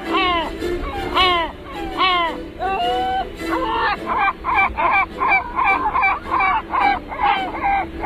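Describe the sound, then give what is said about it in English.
Deep, loud calls of a great black-backed gull: a few long, drawn-out wails followed by a rapid series of short, barking notes repeated steadily until the end. “And the biggest and baddest of them all is the great black-backed gull.”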